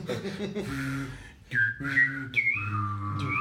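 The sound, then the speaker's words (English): A buzzy, reedy kazoo plays a short melody of held notes that step up and down in pitch, fairly loud and with no talking over it. “All right, and now's the kazoo version.”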